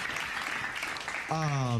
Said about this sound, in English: Clap it up for the men's broadcast team. You know, absolutely.